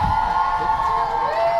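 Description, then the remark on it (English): A crowd cheers loudly and steadily, with high whoops rising over a constant roar that holds through the whole short burst, with no talking. “Hold for applause.”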